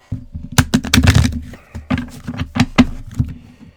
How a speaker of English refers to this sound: And those of you who want a card reading, 1 through 5, pick a card. All right. Shuffling. Every day I'm shuffling, shuffling.